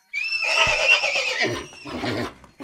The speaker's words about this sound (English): Where did that horse come from?